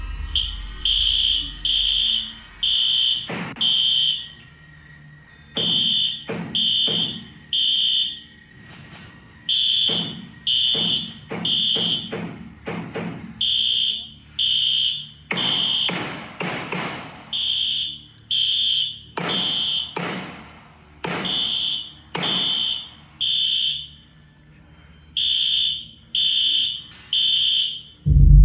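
A school fire alarm, recorded by students inside classroom 1213 during a shooting, blares in steady, evenly spaced high-pitched pulses for the whole stretch, while loud, sharp gunshots break in irregularly between the blasts. No one speaks.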